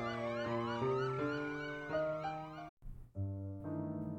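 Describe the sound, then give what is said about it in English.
Loud emergency vehicle sirens wail and warble together in overlapping sweeping tones, briefly cutting out before a steady high siren tone resumes. “But I could hear sirens and see lights, flashing lights, as I began to lose consciousness.”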